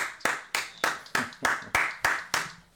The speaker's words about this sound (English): I was like, all right, where them claps coming from?